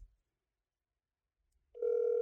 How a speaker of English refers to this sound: All right, right now you can hear the phone ringing. Hopefully he's not on the toilet.